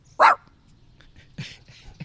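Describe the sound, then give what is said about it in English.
A person imitates a dog with one loud, sharp bark near the start, followed by a few faint, breathy sounds and soft low noises. “So you already did the sound, the barky bark.”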